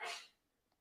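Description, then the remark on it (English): A single short sneeze bursts out loudly, then fades into near silence, with a faint small sound trailing at the end. “Bless you.”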